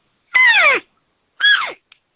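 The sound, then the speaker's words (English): Two loud, nasal, mewing cow calls blown on a game call, each sliding downward in pitch and lasting about half a second, separated by a short pause. No talking. “Normally what I'll do is I'll just give a cow call like this.”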